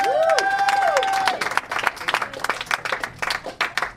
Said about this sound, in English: give him some applause. Do something this episode, you lazy fuck.